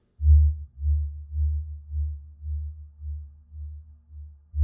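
A deep, eerie low hum of a singing river drones steadily beneath its slow, free-flowing waters, swelling and fading in slow rhythmic pulses about twice a second, with no other sounds and no voices; its source is unknown.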